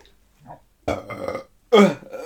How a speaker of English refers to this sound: Okay, today was the second time, but it wasn't, like, in my face. Like, she burped in my face, and I, like, smelled it.